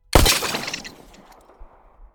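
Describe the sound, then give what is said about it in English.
A sniper's bullet strikes and shatters an enemy's rifle scope atop a water tank: one sharp, loud crack of breaking glass, then a quick spray of bright tinkling fragments that fades over about two seconds, with no voices. “It bored through the enemy's rifle scope, plunged into his open eyes, and exited the back of his skull, spraying brain matter and eye core onto the bleached white rooftop of the tank.”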